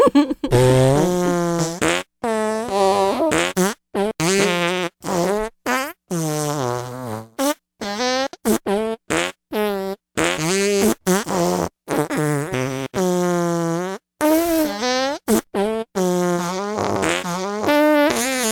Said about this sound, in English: Get to farting. Get to farting.